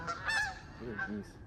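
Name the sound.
geese honking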